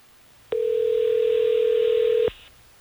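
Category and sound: signal or alarm, telephone dialing and ringing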